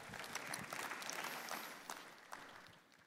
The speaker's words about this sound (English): His love, God's love, is transformative. You can clap for that.